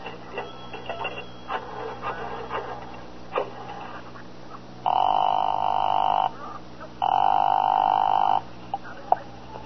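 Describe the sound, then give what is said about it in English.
A 10-cent coin clinks into a payphone, followed by a series of clicks as a number is dialed, then two long, steady ringing tones on the line. “I stopped to look up an address in the phone book, and then I invested 10 cents.”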